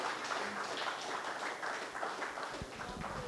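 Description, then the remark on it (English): On Mother's Day, an audience claps for the mothers present in a steady, dense wash of applause that holds at an even level for the whole few seconds, with no one speaking over it. “Let's clap for all our moms here.”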